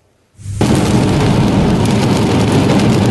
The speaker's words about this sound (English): The rain pounding down on parts of the lower mainland as well.